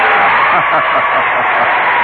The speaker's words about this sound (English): So would you please give a cheer to all those who are sad about every damn thing in the world?